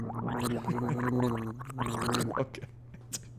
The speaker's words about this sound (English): You ever frothed an orange juice in your mouth before?